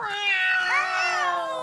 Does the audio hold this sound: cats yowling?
yes